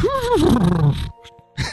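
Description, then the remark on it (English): A person imitates a horse with a single vocal whinny that wavers and slides downward in pitch for about a second, then cuts off into near silence with a faint breath at the end. “That's my horse impersonation.”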